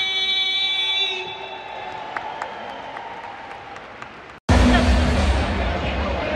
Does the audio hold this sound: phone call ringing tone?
no